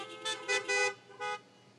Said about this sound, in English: By the way, they still are good guys, the vast majority of them, and all God's people honk your horns.